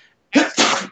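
sneeze

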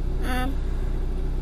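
car interior

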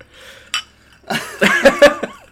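drinks clinking together

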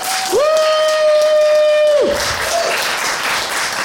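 audience applause and cheering

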